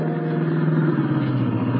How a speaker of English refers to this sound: Oh, that's Billy Johnson's jalopy